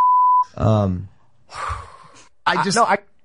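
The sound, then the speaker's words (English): A steady, pure censor bleep covering a spoken name lasts about half a second, followed by bursts of speech with pauses between them. “So the name that got beeped out, for those of you who can't or aren't familiar with this situation, is”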